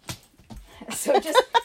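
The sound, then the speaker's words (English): An enormous puppy squeaks along with her squeaky hedgehog toy, giving a quick cluster of short, high-pitched squeals and chirps in an irregular burst, fairly soft overall. “the squeaking is the puppy. Enormous puppy and her hedgehog toy.”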